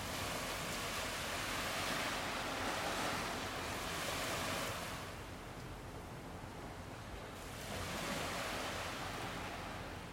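Ocean waves roll in and out continuously, a broad steady wash of surf that swells louder, eases for a few seconds, then builds again, with no voices present.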